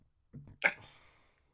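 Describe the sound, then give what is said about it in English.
A short burp: a low guttural rumble followed by a quick sharper gulp, over in under a second, with no talking around it. “Ooh, I had a burp.”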